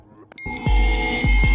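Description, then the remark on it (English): A loud, steady electronic alarm rings in a Soviet missile-warning bunker after satellites signal the launch of Minuteman intercontinental ballistic missiles, with shrill, buzzing high tones punctuated by a few deep, rhythmic pulses thudding underneath. It starts abruptly after a brief quiet moment and keeps blaring. “Deafening alarms, sirens, a red button pulsates at Petrov's fingertips, waiting.”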